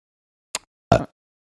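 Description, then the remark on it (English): A single sneeze: a brief sharp intake followed by a loud, explosive, voiced burst that cuts off quickly, with no talking around it. “Bless you.”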